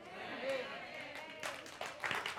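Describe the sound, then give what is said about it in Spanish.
An audience breaks into scattered applause, the claps building in short bursts toward the end while a voice keeps talking over them at moderate volume. “Dejen los aplausos para después, por favor.”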